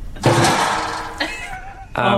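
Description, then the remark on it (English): A comic sound effect of something being tossed into a bin: three loud, creaking, whining tonal bursts, the first long and sliding, the last abrupt, with no talking. “Here it goes into the bin.”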